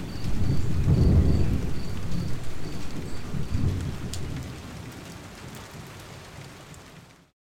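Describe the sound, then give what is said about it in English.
Deep rolling thunder echoes loudly across a grassy plain, swelling twice before fading into a steady wash of rain that continues alone until the end. “It's not long before a roll of thunder echoes across the plain.”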